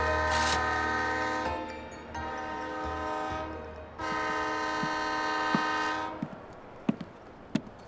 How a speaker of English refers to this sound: Loveday Brooke arrived at the Addington train station at 11 o'clock the following morning.